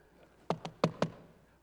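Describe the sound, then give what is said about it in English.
Four quick, sharp knocks on a door, rapped in a brisk, even rhythm, with no talking around them and only quiet room tone before and after. “And she'd knock on your door.”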